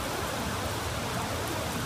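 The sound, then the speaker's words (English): A steady, dense wash of heavy rain pouring down, loud, with no pauses or talking over its hiss; heard from under a bridge. “oh boy, here it comes. It's really coming down now.”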